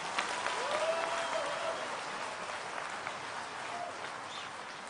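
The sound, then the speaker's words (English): A church audience claps their hands for the Lord, a dense wash of many hands applauding at once, with faint voices calling out beneath the sustained clapping. “Can you clap your hands for the Lord?”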